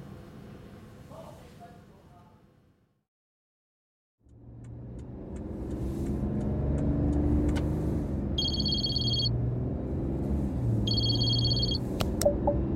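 A car engine hums with a steady low drone after a brief quiet gap as the car drives away, while two short bursts of electronic ringing tones sound over it.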